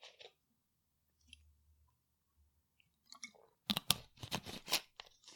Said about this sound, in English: I'll also have a sip of water, if you don't mind.